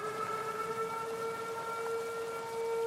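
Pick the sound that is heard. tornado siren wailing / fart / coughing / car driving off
tornado siren wailing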